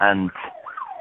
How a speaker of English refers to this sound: And the police car just went past. The coppers, the rosers are driving past my car.